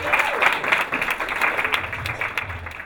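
An audience breaks into steady applause, a dense, continuous wash of many hands clapping at a fairly loud, even level for a few seconds, with no voices standing out.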